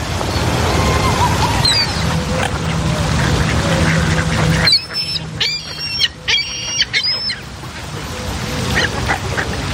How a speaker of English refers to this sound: Look at the seagulls in the room.